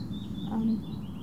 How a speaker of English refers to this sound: Some like crows and birds flying around and birds cheeping.